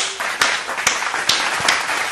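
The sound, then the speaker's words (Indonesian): Hand clapping in a steady, even rhythm, about four or five sharp claps roughly half a second apart, standing out over a continuous noisy background. “Satu lagi tepukan lah tu tadi.”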